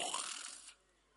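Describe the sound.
A single short, breathy rasp from a voice imitating a woman's snore, fairly loud for under a second before fading into near silence.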